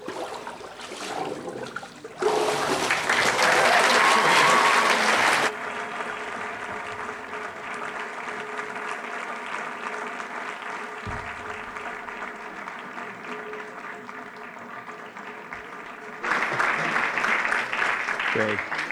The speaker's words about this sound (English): Great, give him a round of applause.